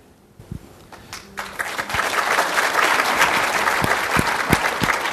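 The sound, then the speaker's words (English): Audience applause as a speaker gets the microphone, starting with a few scattered claps and quickly swelling into steady, dense clapping that holds loud and even to the end, with a few sharper individual claps standing out. “So nice that you clap when I get the microphone.”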